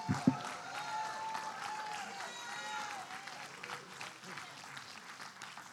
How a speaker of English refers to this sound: God, we release your glory over the Gold Coast. Now give the Lord a hand clap of praise. Amen.